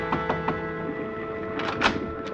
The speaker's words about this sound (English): At 10 o'clock that night, there was a tap on my cabin door.